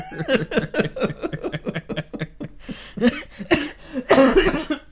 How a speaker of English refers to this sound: Sorry. Oh, still a little bit of that flu kicking around, huh? Oh, yeah. This cough I don't think is going to go away ever.